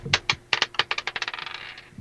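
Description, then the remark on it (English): Dice rolled by a game player clatter across a hard tabletop, a few separate knocks followed by a quickening run of smaller clicks that fade as they settle, landing on 24. No one speaks. “I love this dice today.”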